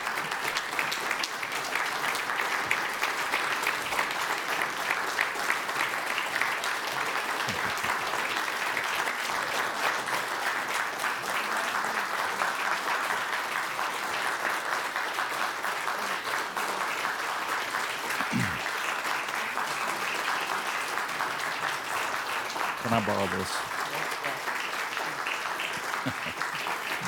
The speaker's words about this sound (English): I'm going to ask these students to quickly make their way up here. And as they're doing so, I just want you to continue to applaud them and to encourage them with your applause right now.